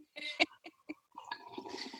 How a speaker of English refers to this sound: Okay, I'm gonna sip my coffee now.